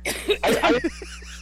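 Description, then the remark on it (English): A woman coughs in a burst of harsh, rough coughs, several bursts run together, followed by faint wheezy breaths trailing off. “Like, your cancer, but they don't cough for 3 minutes.”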